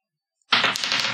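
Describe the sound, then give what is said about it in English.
After a brief silence, a loud clatter of dice tumbling across a hard surface, with several sharp clicks in quick succession. “It is time. Roll that dice.”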